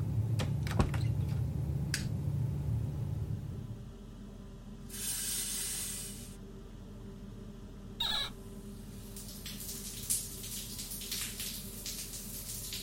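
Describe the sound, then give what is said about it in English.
A shower tap sprays freezing cold water in a few short hissing bursts, turned on and off, with a steady low rumble underneath and no voices. “That's freezing. Why are you still so cold? What kind of water heater does this place have?”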